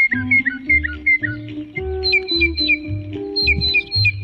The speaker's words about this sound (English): The northern mockingbird, Mimus polyglottos, a favorite of many, including the third president of the United States, and today's Talkin' Birds featured feathered friend.